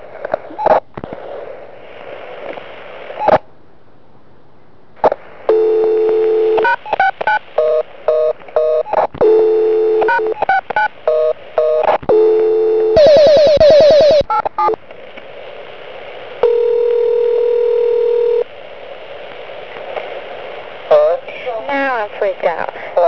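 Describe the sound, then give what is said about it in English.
A series of telephone keypad tones as someone tries to dial star 69 on a house phone, short steady beeps at varying pitches, punctuated by a rapid burst of clicks, then a sustained dial tone hums on, with faint background noise throughout. “My house number, and I was trying to star 69 it, and it just beeped.”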